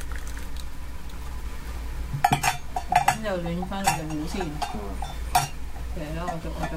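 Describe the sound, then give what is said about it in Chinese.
Boiling water is poured into cocktail glasses to warm them, amid a run of sharp glassy clinks and clatters, starting after a quiet opening, with murmured voices underneath. “啱啱就將啲滾水倒咗落去，就其實做咩？就係將啲杯暖一暖先，就費事咧將啲熱，因為冷熱相加係好易爆嘅嗰樣嘢都。”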